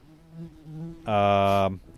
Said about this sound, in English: So this is bumblebee flying right around Caveman's head, and it won't leave.